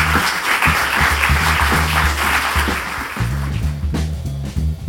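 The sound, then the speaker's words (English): A crowd applauding steadily, a dense crackle of clapping that holds for the whole stretch, with low, shifting tones running underneath and no one speaking. “Give them a round of applause, guys.”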